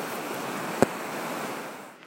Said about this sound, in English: And now we've arrived at this bend in this rapidy river. I guess it's the same one that was flowing by where I parked my van, but here is something interesting.